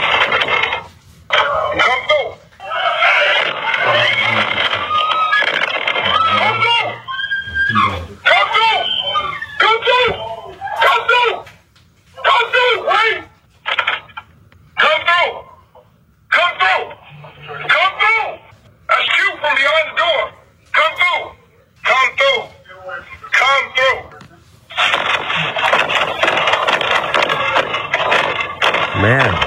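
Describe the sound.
A man shouts and talks loudly while heavy thuds and bangs hit a door at irregular intervals, the muffled, tinny recording broken by sharp impacts throughout.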